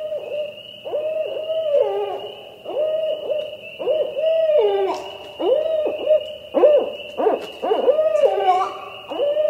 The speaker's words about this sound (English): That's a barred owl, B-A-R-R-E-D, barred.